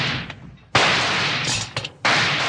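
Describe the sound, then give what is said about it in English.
Two loud gunshots ring out about a second apart, each a sudden harsh crack that blooms into a long, noisy roar, from a gun fired by yanking a rawhide cord looped around its trigger. No one speaks. “He fired at the first strike. You knocked my gun right out of my hand.”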